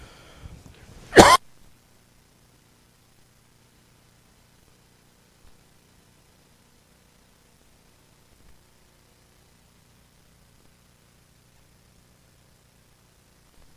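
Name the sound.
coughing fit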